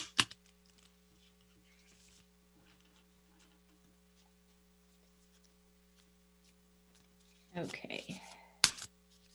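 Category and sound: household object, shuffling tarot cards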